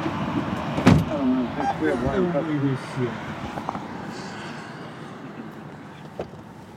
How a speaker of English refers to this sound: No, he's getting in the car. It was the first time all day that someone had been in the back seat of the car.